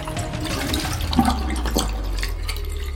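A toilet flushes, a steady rushing and gurgling of water with a deep low rumble that carries on evenly for the whole few seconds, with no voices.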